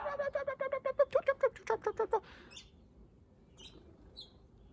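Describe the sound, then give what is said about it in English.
A voice imitates birds with a quick, rhythmic run of about a dozen chirping squeaks, followed by a few faint, high tweets in the quiet that follows. “if you walked into a park with 50 trees, and it was just you in the center of these 50 trees, on every branch there was hundreds and hundreds of birds.”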